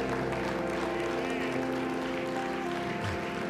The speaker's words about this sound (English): Come on, give him a hand clap of praise in this house today.